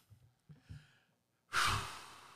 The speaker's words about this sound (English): I'm going to have to go with... Is it heavy breathing?